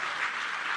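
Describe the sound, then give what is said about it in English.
An audience applauds Mayhayley, a dense, steady wash of many hands clapping at an even loudness throughout the brief moment, with no voices on top. “Give a F. Round of applause for Mayhayley.”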